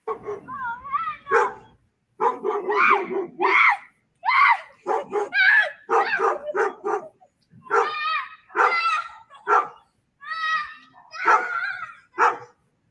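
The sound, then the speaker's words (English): A dog barks over and over in quick, high-pitched bursts, loud, with some yelping and whining mixed into the agitated barking, apparently scared by a boy crawling around in a Megan Halloween costume. “Even scaring a dog, it looks like.”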